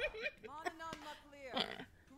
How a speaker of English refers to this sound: Excuse you, sir. A hiccup.